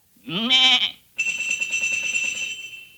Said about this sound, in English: He say, a lot of sheep have bells, but these sheep are tuned. Says to make the chromatic scales, which he make use of by knocking the sheep on the head with his crook, a signal to them to ring the bell. He do it like this.